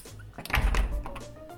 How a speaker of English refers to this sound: I'm going to close the door and lock it now, okay?